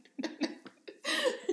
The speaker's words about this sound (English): Excuse me. You okay there? It's not the virus. It's just a cough. Sometimes a cough is just a cough. Swallowed my coffee wrong. Sorry.